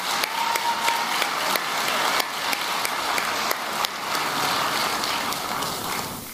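An audience at a leadership conference applauds Senator Kamala Harris steadily and loudly, dense overlapping claps forming a continuous wash of sound for several seconds, tapering slightly toward the end. No one speaks.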